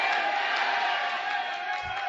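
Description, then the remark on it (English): An audience shouts amen together, a loud, sustained roar of many voices blending into one continuous wall of sound that holds steady for about two seconds. “If you believe it is done, shout that amen like thunder.”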